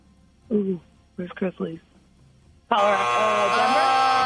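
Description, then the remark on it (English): A person briefly gives the wrong answer "Denver" to a trivia question, then a loud, harsh wrong-answer buzzer blares, holding one steady droning tone for about a second and a half until the end. “Sorry, that's a buzzer, but Denver, not correct.”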